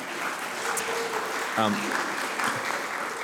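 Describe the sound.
An audience applauds during a church sermon in a dense, steady wash of clapping that lasts about three seconds, with a brief voice briefly rising above the noise partway through.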